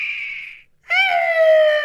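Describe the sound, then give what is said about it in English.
A peregrine falcon's screech: a short, high, thin cry, a brief pause, then a longer, loud, harsh, steady call that drifts slightly lower as it holds. No one speaks. “It's actually a peregrine falcon.”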